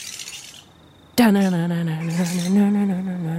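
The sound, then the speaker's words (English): Grey-headed flying foxes squeak and chatter in a bat camp up in a tree, a scratchy, busy background of calls, then one loud, drawn-out, nasal squawk sounds and holds for a couple of seconds. “I can see that these particular flying foxes are grey-headed flying foxes.”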